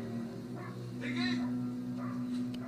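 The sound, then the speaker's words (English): A dog in a film barks and whimpers in a few short, high-pitched bursts spread across a couple of seconds, fairly faint, over a steady low electrical hum. “The dog's still alive.”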